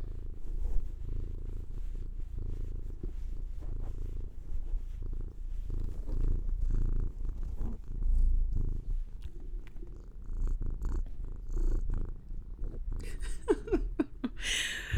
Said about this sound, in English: Let's see if you guys can hear Sasha. She's purring.